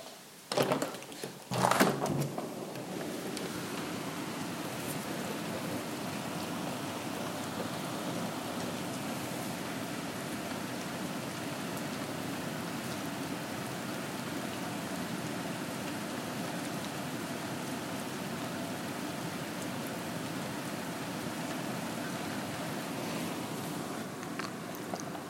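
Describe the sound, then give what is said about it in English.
Steady rain falls continuously outdoors on a cold night, a dense, even hiss of drops that holds at a constant level, after a few brief handling knocks at the very start. “I kind of want to record the rain and see what happens.”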